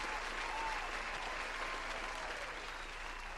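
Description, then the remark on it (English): Steady, dense applause from many hands, a round of applause for James Harden winning MVP, a continuous crackling wash of clapping that holds at an even loudness throughout, with no voices standing out. “Oh my gosh, so many congratulations today, but let's do one more round of applause for James Harden, MVP.”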